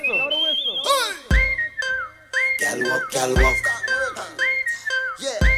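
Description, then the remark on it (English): A whistle is blown in a series of short, steady blasts that repeat at a quick, regular rhythm over loud thumping beats, with voices chanting underneath. “Blow the whistle.”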